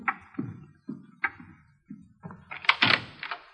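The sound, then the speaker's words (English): A series of dull, evenly spaced thuds at the front door, then a louder rattling clatter as the front door is opened, with no voices. “Front door? Yeah, I'll get it.”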